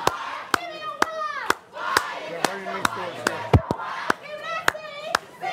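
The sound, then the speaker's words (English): A group of people led by Booker claps while walking, in a loose, steady rhythm of sharp, loud claps, while voices cheer and shout excitedly over them. Press with cameras is in front of him. Overlapping crowd chatter throughout. “And then he's leading this group of people, like, clapping and cheering while walking.”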